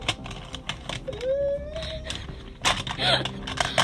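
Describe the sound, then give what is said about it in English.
Pencils rattle and click together in irregular bursts of dry, tapping clatter, with a brief rising vocal whine partway through and a busier flurry of knocks near the end. “Sorry, I'm messing with my pencils”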